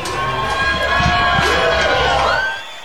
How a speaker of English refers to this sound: As you hear the crowd maybe in the background, the band seemed like it just took their stage.